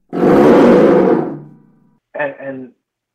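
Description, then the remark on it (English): A lion's roar sound-effect instrument made by Ludwig and Ludwig gives one loud, raspy, growling roar lasting about a second before fading away, followed after a short pause by a brief voice. “Like this lion's roar that I showed you was something that only Ludwig and Ludwig made.”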